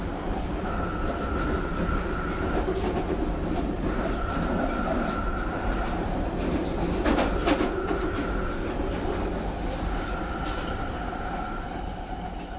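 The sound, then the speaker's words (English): A London Underground tube train rumbles steadily, with a motor whine rising in repeated stretches and a burst of rattling clatter midway, with no voices. “It can range between 25 minutes on a good day to about 40, 45 minutes, depending on whether there are strikes or delays or anything on the trains, because I go by tube.”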